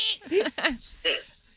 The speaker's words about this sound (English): Because of the hiccup.